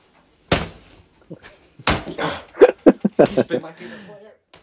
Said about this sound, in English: He is punching his Everton Richarlison jersey